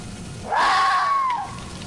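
A single drawn-out fox scream, a shrill, wavering cry lasting about a second that rises sharply then slowly sags in pitch, heard over a steady hiss of background noise.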